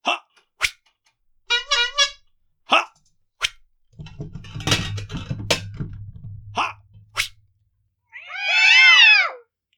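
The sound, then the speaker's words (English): Two cats, hit by one thrown dagger, yowl and screech in short, sharp cries, with a rumbling scuffle partway through, then one long, loud, wavering yowl near the end. No one speaks. “Two cats with one dagger.”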